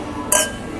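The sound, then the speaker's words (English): A single bright clink of glasses of beer touching in a toast, sharp, ringing briefly over a quiet background. “Cheers. Cheers.”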